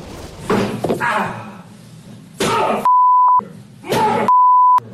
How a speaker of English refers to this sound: shows troubled actor Johnny Depp slamming various objects while hurling insults at his ex-wife